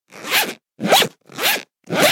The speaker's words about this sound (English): Oh, hang on. Ah, maybe I can unzip my way out.